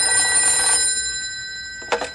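An old telephone bell rings in two bright, metallic bursts at Ranger headquarters, a call from the Pentagon: a long trilling ring that fades, a short pause, then a second sharp ring starting. No voices are heard.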